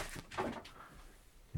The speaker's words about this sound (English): My kitten has knocked my laptop over.